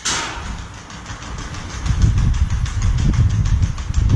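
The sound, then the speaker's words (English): A Russian robot dog's feet clatter across brick in quick, steady steps, with a loud low mechanical rumble building underneath after a brief hiss at the start. No one speaks. “That's his feet on the brick.”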